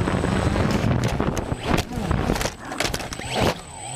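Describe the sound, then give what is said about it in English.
A small drone's steady high-pitched whine over rushing wind noise, broken by several sharp thuds and scuffing knocks as a kangaroo punches it out of the sky, with the motor sputtering near the end. “And here's one such irritated marsupial punching a drone out of the sky.”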